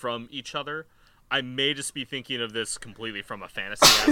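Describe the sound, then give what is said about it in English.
A man talks steadily, then a single sudden, loud sneeze bursts out right at the end, cutting off abruptly. “Excuse me. Bless you.”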